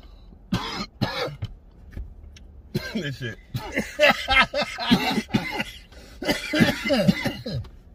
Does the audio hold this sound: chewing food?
no